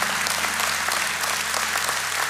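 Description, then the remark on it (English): Steady applause from a crowd clapping for people seeking healing from God, many hands clapping together in a dense, continuous wash of sound at an even volume, with no voices standing out. “What I want the rest of you to do is I want you all to clap right now because we have some honest people that are seeking healing from God.”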